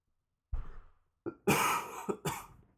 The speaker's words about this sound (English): Oh, it's first cough of the day. Acid spitting.